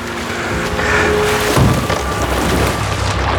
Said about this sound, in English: Before landing headfirst into the water and into the block. And then just a thunk as the boat hits the block. This thump noise.